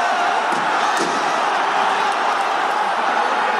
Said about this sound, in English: There's the final whistle. Ground behind me erupts with joy. as Dynamo Kiev have beaten their fierce rivals, Shakhtar Donetsk, 1-0.